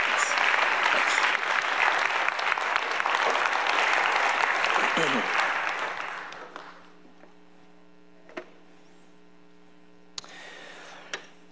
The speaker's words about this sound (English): Please, again, a way to say thank you, give a round of applause to Dr. Yuan.